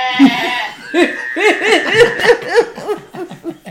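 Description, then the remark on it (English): A person does a wavering, bleating goat impression, a string of quavering "maa" sounds that blends into laughter, with other people laughing along. It is loud. “Be like, Billy Goat looking motherfucker.”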